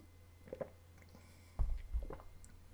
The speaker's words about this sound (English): Having some water.